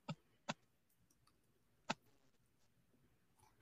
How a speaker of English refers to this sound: So I hear some typing.